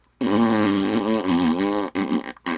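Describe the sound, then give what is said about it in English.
A loud, drawn-out fart noise with a wobbling, buzzy pitch lasts nearly two seconds, then ends in a couple of short sputtering bursts. Prominent, with no talking. “And he gets another fine for farting intently at the judge.”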